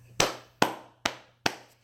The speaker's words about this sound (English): You got to clap it up for that.